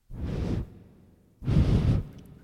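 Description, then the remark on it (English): Two breathy whooshes of air blown into a toilet paper roll as if trying to inflate it, each about half a second long, the second one louder and fuller. No one speaks. “This is what it sounds like when you try to inflate a toilet paper roll.”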